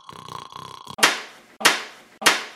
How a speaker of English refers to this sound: Hey, now, that's quite enough slapping.